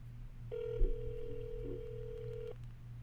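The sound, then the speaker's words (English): A single steady ringback tone from an outgoing phone call, placed on speaker to wish someone a happy Father's Day, sounds for about two seconds over a low background hum, clear and moderately loud, like a line ringing on the other end. “This now, let's see, what's the chances he picks up the phone?”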